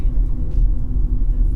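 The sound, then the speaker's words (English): Steady, low road rumble from inside a moving car driving north, a continuous deep drone with a faint engine hum that holds at a constant level throughout. “And there follows 4 hours and 37 minutes of recorded footage of the scan jam session before I got back in the car to drive north for Tim and Tano's attempt.”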